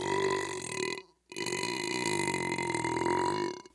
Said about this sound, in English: One more fucking time, audience. That is a fucking massive and impressive burp.